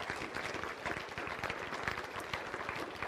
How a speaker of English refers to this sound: And so how about if we honor them just with a round of applause and say thank you to them for what they do.